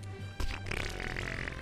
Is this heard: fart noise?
yes